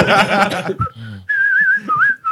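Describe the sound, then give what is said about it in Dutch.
A person whistles a short, wavering melody, following a brief burst of rich, harmonic sound at the start. “Ja, er moet een fluitje bij.”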